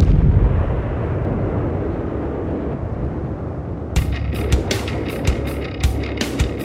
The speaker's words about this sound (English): You should experience lots of explosions with no body parts. Parents should be ready to cover their ears.